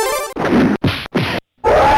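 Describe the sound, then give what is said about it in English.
A rapid burst of heavy, crunchy punch impacts, three sharp hits in quick succession after a short whoosh, then a final ringing strike, sound effects from the Street Fighter arcade game. “Yeah, so just hearing the sounds of the punches and all the special moves, like Hadouken.”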